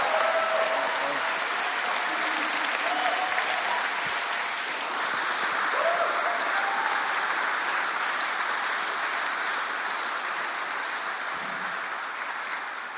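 An audience claps steadily for about thirteen seconds for a man who has just shared his story, a dense, sustained wash of many hands at an even loudness that tapers only slightly at the end, with a few faint voices mixed in.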